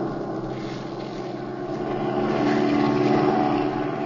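A steady propeller airplane engine drones continuously, a dense mechanical hum that swells slightly louder partway through, heard alone without any voices.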